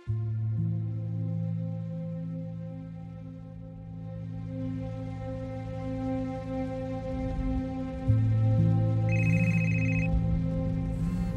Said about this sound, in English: The phone on the passenger seat rang for the 20th time. I eyed it peripherally with partial attention to the road.